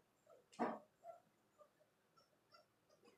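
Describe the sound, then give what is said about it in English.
A dog squeezes a squeaky toy: one loud, sharp squeak followed by a string of softer, shorter squeaks at a quick, uneven pace, with no talking. “Okay, he's not whining. Yeah, it's good. Just a squeaky toy going, please put me out of my misery.”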